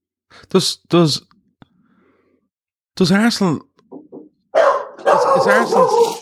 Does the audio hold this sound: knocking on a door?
no